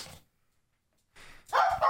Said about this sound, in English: Whatever, she's gonna bark at me. Just close the door. So you just hear it out the door.